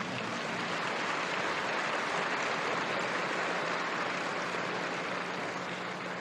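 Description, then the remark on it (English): A large crowd applauds the company's board of directors after they are introduced, a dense wash of clapping that holds at an even, loud level for about six seconds with no voices over it. “Give them a lot of applause, because they don't get much else for it.”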